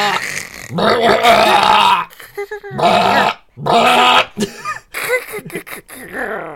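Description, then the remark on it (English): A voice attempts the Chewbacca sound, producing a series of loud, guttural rolled R sounds from the back of the throat, rasping growl-like bursts separated by brief pauses. “It's like it's like a rolling of their R's, but from the back of your throat.”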